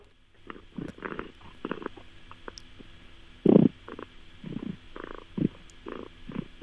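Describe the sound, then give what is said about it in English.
A cat in Huntingdon, UK, purrs loudly, a really deep, rough rumble that edges toward a growl, pulsing in uneven bursts with one louder swell midway and no talking. “Oh. That's Bella. Yeah, I can hear Bella. It's, I mean, it almost doesn't even. It's in a growl category almost, right?”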